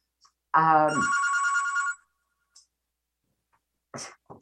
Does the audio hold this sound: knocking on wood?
no